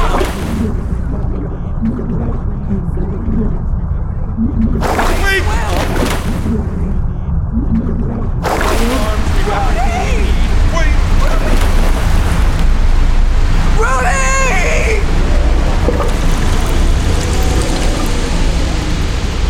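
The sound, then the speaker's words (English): A strong current of water roars steadily for the whole stretch, with louder surging bursts partway through and faint warbling tones mixed into the churn. “Oh, this is a strong current.”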